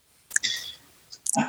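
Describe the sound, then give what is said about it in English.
A few sharp mouse clicks while clicking through pictures, spaced out over a second or so, with a faint whir between them, before a voice starts speaking at the end. “Oh, it looks a lot like it in the pictures that I'm clicking through.”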